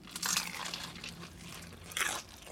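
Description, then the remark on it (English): Crisp crunching as teeth bite into crunchy fried chicken from a 10-piece bucket, two main bursts of crackly crunch with softer chewing between, then a sudden louder thump at the end. “That is crunchy. Very, very crunchy.”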